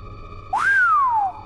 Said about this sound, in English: The very peak had to be four stories above me now. I whistled.